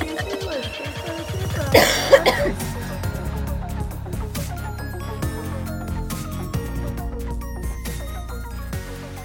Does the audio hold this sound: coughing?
yes